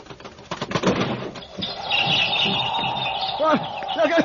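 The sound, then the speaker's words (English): A bird outside batters at a window trying to get in, with a burst of sharp taps and fluttering, then steady shrill chirping and a few rising cries, moderately loud. “There's some bird out there trying to get in.”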